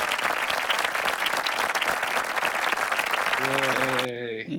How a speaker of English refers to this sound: Well, look, they tape the TV shows and they have the applause tracks. You know, just for you, we're going to add that part in. We're going to give you a clap track there.